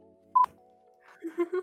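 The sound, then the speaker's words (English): A stock availability alarm signals that something became available: a short, sharp electronic beep at a mid pitch, over a faint steady hum, followed about a second later by a few quick tonal chirps. “That alarm was that something when apparently became available, but it's always 3 minutes late.”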